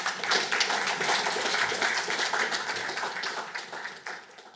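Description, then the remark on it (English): An audience claps steadily, a dense wash of overlapping handclaps that holds strong for a few seconds, then gradually thins and tapers off near the end. “Round of applause for Nick.”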